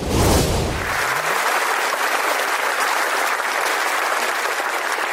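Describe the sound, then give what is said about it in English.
A large crowd applauds steadily as a guest walks out on stage, a dense wash of clapping that stays loud and even throughout, with a brief louder burst at the very start. “Well, when you walked out on stage, there was a huge applause.”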